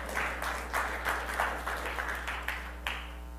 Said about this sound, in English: Come on, yeah, you can clap over that.